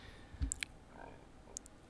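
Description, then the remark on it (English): A small brass pencil plane, a miniature version of a woodworking plane used for sharpening pencils, is handled: a soft knock followed by a few sharp, bright metallic clicks, then one more pair of clicks a moment later, all fairly quiet. “It is a brass plane for sharpening pencils.”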